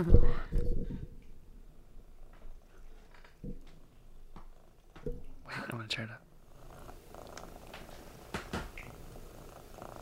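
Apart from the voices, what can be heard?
cat purring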